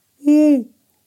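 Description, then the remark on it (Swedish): A single sustained hoot from a human voice imitating an owl heard at night in central Karlstad, Sweden, steady and fairly loud, lasting about half a second before trailing off, with silence on either side. “Jag tänkte, ja, uggla, men för fan, mitt i stan finns inte ett träd någonstans.”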